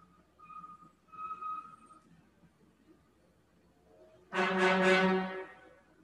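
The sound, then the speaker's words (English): A loud, brassy horn honks once, a single sustained blast of about a second, preceded by faint tonal tones and quiet background hum. “We got a little confirmation from the horn honking.”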